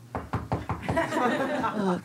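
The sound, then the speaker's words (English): A quick, even series of about five knocks, a man rapping to mimic a knock at the door, followed right away by a voice talking and laughing. “And then I hear a knock at the door, but it's like literally him going like this.”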